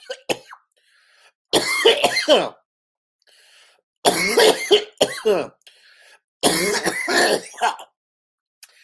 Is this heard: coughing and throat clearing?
yes